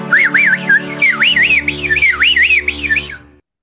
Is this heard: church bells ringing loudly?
no